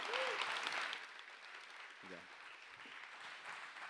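An audience claps in a dense, continuous patter, loudest in the first second and then settling into steady applause, with a brief vocal sound rising over it midway.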